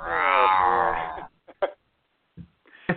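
A loud, drawn-out cat growl sounds for just over a second as part of a jingle being played, then gives way to a few short, faint clicks and brief bursts of sound.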